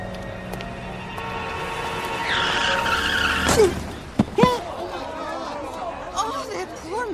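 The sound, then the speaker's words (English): A car's tires screech loudly for a couple of seconds as it skids on a busy street, then a sharp thud as it hits a man, followed by excited voices talking over the street background. “That car, it hit him.”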